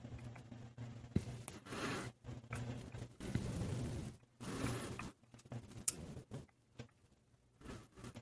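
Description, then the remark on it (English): Rapid, forceful keyboard typing on Discord: dense bursts of sharp clicks in an uneven rhythm with brief pauses, over a low steady hum, with no one talking. “Who's typing out an essay right now?”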